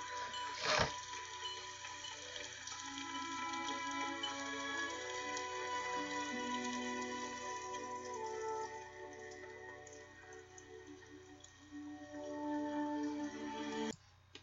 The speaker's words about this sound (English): It's starting to rain.